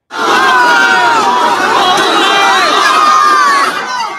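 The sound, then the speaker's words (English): A huge crowd of upwards of 5,000 people at a large fake McMaster University homecoming party in Hamilton on a Saturday roars without a break, countless overlapping voices shouting, whooping and cheering at a loud, steady level for about four seconds, with high-pitched yells rising above the din. “It attracted upwards of 5,000 people at its peak. Here is some of what it sounded like.”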